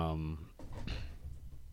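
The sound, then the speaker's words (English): A voice trails off, then a dog shaking itself jolts a desk, giving a short burst of irregular rattles and knocks that fade into a low, steady background. “Wow, the dog just shook the whole desk.”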